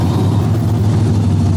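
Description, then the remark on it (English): A muscle car engine rumbles loudly, a deep, steady, throaty throb that holds the whole time with no voices. “This is for those of you who are older who remember muscle cars, and for those of you who are younger that don't, this is what a muscle car actually sounds like.”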